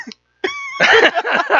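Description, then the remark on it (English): A short tonal vocal sound gives way to a loud run of harsh, raspy coughing bursts that continue back-to-back to the end. “How about coughing? Coughing.”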